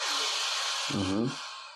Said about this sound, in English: My dog is now snoring here. Yeah, I can hear. It's a very rude dog.